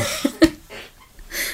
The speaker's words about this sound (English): Now I'm coughing my lungs.